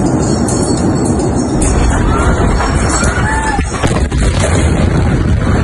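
A massive explosion at a warehouse in Beirut, Lebanon, linked to almost 3,000 tons of stored ammonium nitrate: a loud, continuous roaring rumble fills the whole recording, broken by a couple of sharp cracking bangs, with faint voices and high whistling sounds underneath.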